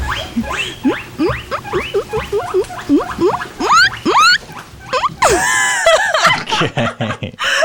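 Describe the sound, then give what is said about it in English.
A voice imitates a guinea pig with a rapid series of high, rising squeaks and wheeks, growing louder and more frantic toward the end, with a breathy snicker mixed in. “Okay, if we were doing guinea pig impressions”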